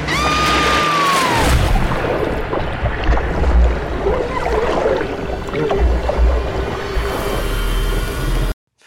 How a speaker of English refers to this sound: Falling in water.